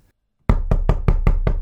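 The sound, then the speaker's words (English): Six loud knocks on a door in a quick, steady rhythm, each a solid thud with a short decay, after a brief moment of silence. No voices. “Well, I also promised that we would find out why God, of all people, would come knocking on his door bearing such a lousy hostess gift.”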